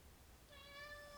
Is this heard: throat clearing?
no